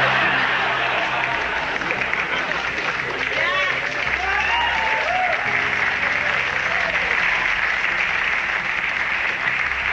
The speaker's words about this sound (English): Women clapped at the premise, and the men clapped at the punchline.